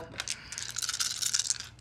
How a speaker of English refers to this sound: Oh, wow. Yep. That's a lot of dice. A handful of dice.